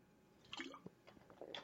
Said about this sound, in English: I'm spilling water all over myself.